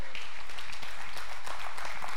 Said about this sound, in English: He is Yahweh. Amen. Some of y'all aren't clapping this morning.